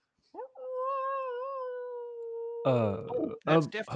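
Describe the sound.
A single long coyote howl on a cold night, steady and slightly wavering, holds for a couple of seconds clear, then gives way to a person talking.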